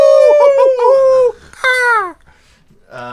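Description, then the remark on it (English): A person vocally imitates an eagle's cry that comes out like a wolf: a long, wavering, strained howl, then a shorter rising-and-falling screech, ending with a brief yelp, loud with no other talking. “Actually, eagle sounds weirder than that. I don't know. That was an eagle wolf.”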